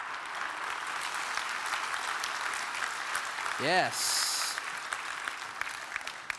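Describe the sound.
An audience claps steadily throughout, a dense, even patter of many hands. Midway, a short rising whoop cuts through, and a voice briefly speaks over the applause.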